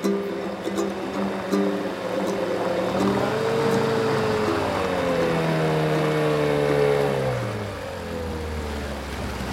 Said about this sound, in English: The boat has just arrived at the dock.